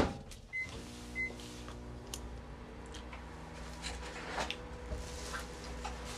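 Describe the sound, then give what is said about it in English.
Two short electronic beeps from a microwave oven, then its steady low motor hum with a whirring drone that runs on evenly, moderately loud, with faint clicks and rustles over it and no voices. “That's what a microwave's for.”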